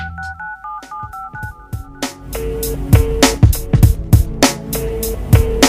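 A quick run of touch-tone phone dialing beeps, about eight short tones in succession, before a punchy drum beat and music kick in and take over.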